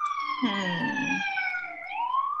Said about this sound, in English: Is the answer a New York City siren? Could be. Who knows?